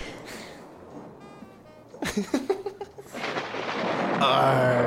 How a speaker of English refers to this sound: Thunder is pretty artsy. Thunder is very. Do you want to have the thunder one again?